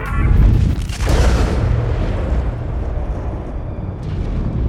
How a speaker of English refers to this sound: The power surge just blew out the relay at Dickerson Terminal, and I'm showing a small fire at the east end of Abel Park.